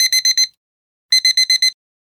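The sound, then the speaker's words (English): A digital alarm clock beeps in two rapid bursts, four sharp electronic beeps, a short pause, then five more, loud with no voices. “An alarm clock.”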